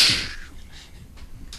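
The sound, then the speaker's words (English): A single sharp whip crack bursts out at the start, loud and bright, then trails off quickly into faint background noise with no one talking. “I think the whip noise is a good follow-up.”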